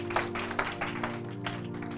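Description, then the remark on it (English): A church audience claps for the Lord Jesus during a sermon, in uneven bursts of overlapping hand claps, moderately loud, with a steady low droning tone sustained underneath and no one speaking. “Clap for the Lord Jesus.”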